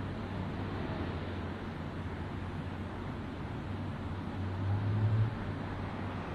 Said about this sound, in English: How do I know I'm not the traffic noise outside?